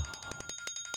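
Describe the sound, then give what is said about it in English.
A timer alarm rings in a rapid, steady string of bright electronic pulses, fairly loud, with no voices over it, signalling that the set time is up. “Oh, there is our timer telling us our time is done, almost done today.”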